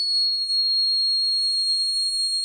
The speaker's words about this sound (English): The grasshopper mouse howl gets up to almost 14,000 hertz. Hear it on your car radio? Not likely. It works better if I lower the pitch by slowing it down.